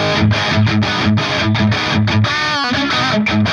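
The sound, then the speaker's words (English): Loud, gritty distorted electric guitar fitted with a buzz stop, played through a noisy P90 pickup, playing chugging, rhythmic chords with short pauses and a brief sliding bend near the end, with no voices. “Right now, I think it's like my favorite P90 that I've got. It's noisy, but it's like it's not too much.”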